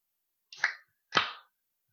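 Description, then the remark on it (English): A beer can cracked open held right up to the microphone, heard as two quick, sharp bursts about half a second apart, each trailing off in a brief fizzy hiss, with no talking. “I'm going to crack it, and you're going to guess what type of beer this is”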